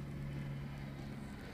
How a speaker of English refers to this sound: There's a helicopter flying by.